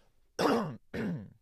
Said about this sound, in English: I'm gonna cough again. Ready?